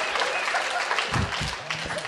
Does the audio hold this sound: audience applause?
yes